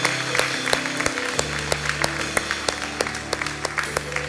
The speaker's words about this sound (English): Amen, amen. Come on, can we just clap for a moment?